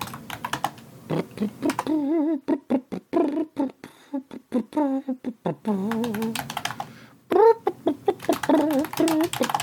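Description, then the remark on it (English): A cat meows repeatedly in drawn-out, wavering cries, heard through a steady, fast clatter of computer keyboard typing that continues throughout. “Why don't we pause and you put some LaCroix in your face and I will go put this cat in the Fortress of Catitude because he's out there going, meow.”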